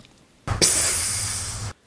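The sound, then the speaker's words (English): A Faygo soda bottle cap cracks open with a short burst, then a loud, steady fizzing hiss of escaping gas that lasts about a second before cutting off abruptly. No one talks. “Get some Faygo. My mouth is just rejecting this, like... Pop that top.”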